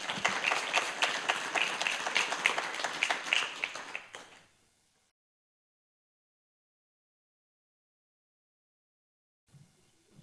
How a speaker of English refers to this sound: So would you give her a round of applause as she comes?